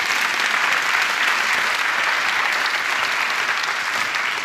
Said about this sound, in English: And on May 30th of this week, every single project that we had left, every debt that we had, we finished. And you can clap, that's awesome.